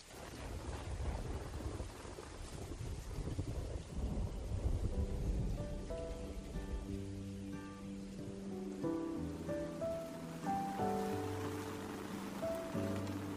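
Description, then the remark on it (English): Steady rain hisses throughout while low thunder rumbles in the first few seconds; soft sustained musical notes fade in about halfway and play beneath the downpour. “During summer's thunderstorms, we marvel at the maple's flexibility and tenacity.”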